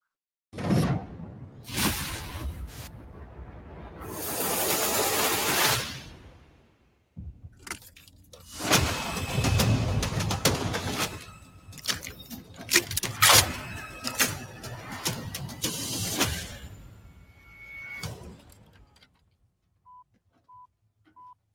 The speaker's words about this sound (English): Next one we have, there's a trailer that was released for Twisted Metal. We'll go ahead and play that really quick before we give our thoughts on it.